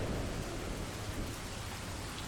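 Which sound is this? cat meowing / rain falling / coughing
rain falling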